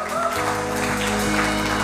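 audience hand clapping

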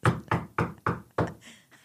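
knocking on a door

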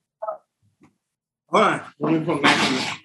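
dogs barking

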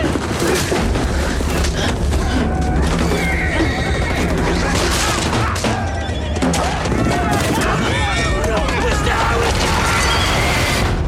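horse neighing

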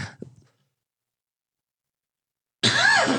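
cough / throat clearing

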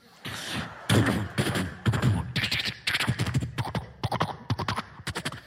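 horse hooves clip-clopping

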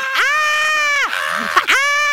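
person screaming

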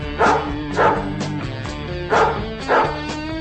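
dogs barking

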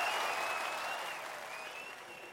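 applause

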